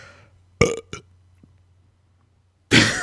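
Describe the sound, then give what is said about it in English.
A burp comes out as a couple of short, weak gulps, then after a pause a louder, rougher belch breaks out at the end. No one speaks. “Just felt the need to share how pathetic my burp would be.”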